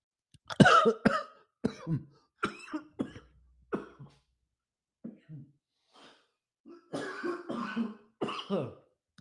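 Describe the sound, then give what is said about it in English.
A fit of harsh, choking coughs after water went down the wrong pipe comes in several bursts, loud at first, then sputtering and catching breath before another run of hacking coughs. No words are spoken. “Wow, that's water. Swear to God, went down the wrong pipe.”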